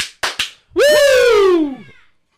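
Two quick, sharp hand claps in rapid succession, followed right after by a loud, drawn-out Ric Flair-style "woo" that slides downward in pitch and fades out.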